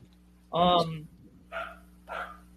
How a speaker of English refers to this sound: What kind of dog do you have, by the way?